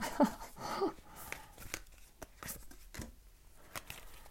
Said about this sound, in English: These cards do not want to shuffle today. There we go.